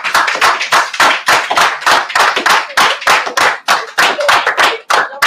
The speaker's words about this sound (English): Let's do this artist a favor. Let's clap for him, man. Let's give him this ovation that he deserves, man.